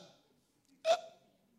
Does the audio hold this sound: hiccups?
yes